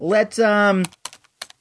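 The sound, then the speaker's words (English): A short voiced sound, like someone humming or speaking, gives way to a handful of crisp, irregular computer keyboard keystrokes, fairly loud, clicking in quick bursts. “I'm typing right now.”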